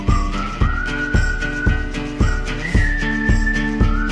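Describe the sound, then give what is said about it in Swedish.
A clear whistled melody holds long, sliding notes over a song's backing music, with a steady thumping beat and acoustic instruments underneath; no one speaks. “Vad kan det här vara då? Vissling.”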